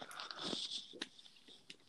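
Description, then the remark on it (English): Crunching of Reese's Puffs peanut butter chocolate cereal being chewed, with a dense burst of crisp crackling followed by a few sharper individual crunches, no talking. “It's got the perfect texture. You're right about that little covering it on does. The outside. It's just that awesome crunch.”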